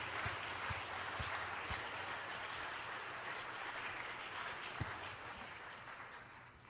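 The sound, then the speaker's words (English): A church audience claps hands in praise to the Lord, steady, dense applause, a broad wash of overlapping claps that holds at an even level throughout with no voices standing out. “Why don't we just give the Lord a good hand clap of praise right now.”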